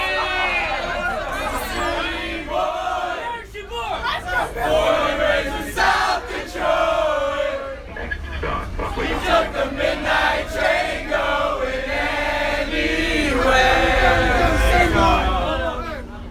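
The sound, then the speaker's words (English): A loud crowd of students shouts and cheers together on a campus turf in the rain on Halloween night, many overlapping voices rising into yells and whoops, with bursts of excited chatter and chanting of "I love the Diamondback!" throughout. “But as the shouts and laughter die down, there's still a part of campus buzzing.”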